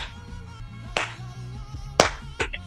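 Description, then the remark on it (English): Sharp hand claps from a song intro ring out over a soft, low musical backing: two well-spaced claps, then a quick pair near the end, crisp. “You hear the hand claps in …, you know right away.”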